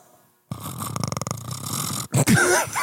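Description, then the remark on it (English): A voice imitates the Predator creature's noise: a loud, raspy, guttural rattle with rapid clicking pulses, a brief break, then a rougher, rising growl. “It halfway sounds like a Predator and like an 18-year-old cat purring.”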